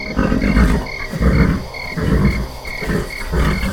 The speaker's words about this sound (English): Frog song joined them, which seemed so loud in the silence of the night, each trying to see who could be the loudest.